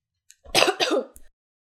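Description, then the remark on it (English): A short throat clearing with a raspy cough-like burst in two rough pulses, followed by a faint click, with no talking around it. “I'm very sorry because I keep coughing and having to pause.”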